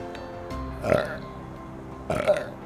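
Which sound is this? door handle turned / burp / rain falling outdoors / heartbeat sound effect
burp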